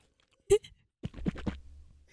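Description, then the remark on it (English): Water swished around in a mouth as sipping ASMR: a quick run of soft, wet sloshing pulses, framed by a couple of sharp smacking clicks at the start and end. No talking. “I'll do the swishing.”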